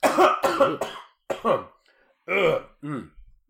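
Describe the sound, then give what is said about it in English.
A string of loud, deliberately fake coughs and throat-clearing bursts, voiced and theatrical, coming in quick clusters with short pauses between them and no speech. “That was fake cough.”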